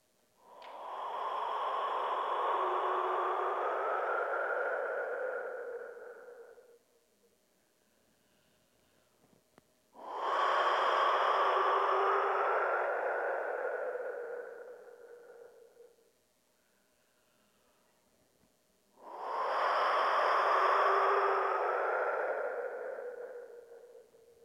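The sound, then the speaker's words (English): Three long, breathy whooshes from a wind whistle, each swelling and fading over several seconds with a hollow, airy tone, separated by short pauses of near silence. “the wind whistle would bring her back into her body. So I'll just play it now”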